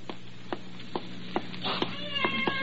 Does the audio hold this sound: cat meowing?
yes